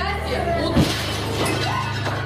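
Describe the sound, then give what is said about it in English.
Window glass shatters in a sudden sharp burst from a meteor explosion, set against a steady low rumble and dense background noise, with indistinct voices faintly present. “1,000 people were injured from shards of flying glass and debris. You saw the explosion from dash cams. You saw windows break.”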